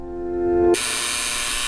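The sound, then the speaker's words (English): An apartment's front door buzzer sounds: a steady humming tone swells for under a second, then snaps into a harsh, loud, raspy electric buzz that holds for about a second before cutting off. “But he's surprised when the front door buzzer buzzes.”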